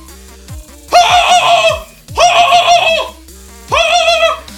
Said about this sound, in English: That's a goose.